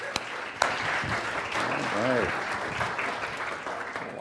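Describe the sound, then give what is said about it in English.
Steady, dense applause from an audience at a Saturday night gathering, welcoming a speaker up, fills the whole stretch, a broad rushing clatter of many hands, with a voice briefly calling out over it partway through. “Give him a hand.”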